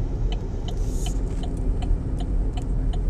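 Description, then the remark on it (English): A steady, loud low rumble of a car engine and road noise from inside a vehicle stuck in traffic, with a faint regular ticking like a turn signal clicking throughout. “I mean, since we're in this traffic.”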